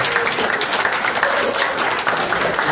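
A crowd applauds steadily, many hands clapping in a dense, continuous wash of sound that stays loud and even throughout, with no voices standing out.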